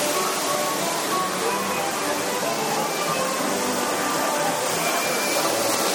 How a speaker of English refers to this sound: We're walking by the waterfall now.